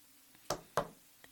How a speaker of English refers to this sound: But there was a knock on the door.